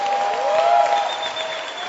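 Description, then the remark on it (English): An audience at a Lighthouse church service applauding for the Lord, a dense, steady wash of many hands clapping at once for two seconds, with a sustained musical tone humming underneath. “Oh, give the Lord a wonderful clap.”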